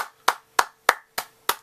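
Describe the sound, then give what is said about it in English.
Five sharp, evenly spaced claps, about three per second, like hands clapping in unison. No voices, and a faint steady hum runs underneath. “And you know what it means, so let's grab a round of applause.”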